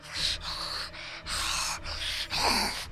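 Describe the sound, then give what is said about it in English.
A creature breathes heavily up close over its new meal in a dark sewer, a run of loud, harsh, raspy inhales and exhales in a steady rhythm with brief pauses between them and no talking. “The sculpture was so close he could hear it breathing heavily in glee over its new meal.”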